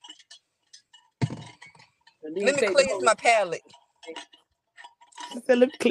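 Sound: ice clinking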